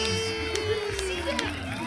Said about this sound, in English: And pulling off the blanket, a chariot fit for a king! And everyone erupts in applause and excitement.